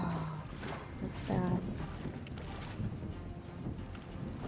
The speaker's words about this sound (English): Heading out into the ocean.